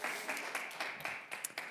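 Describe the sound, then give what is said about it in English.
A short burst of group applause for people who have just taught a class lesson, a steady wash of many hands clapping with a few sharper individual claps standing out, moderately loud and without any voices. “All right, y'all give them a round of applause.”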